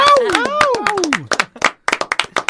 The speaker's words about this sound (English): Until then, let's put our hands together one more time in that awkward clap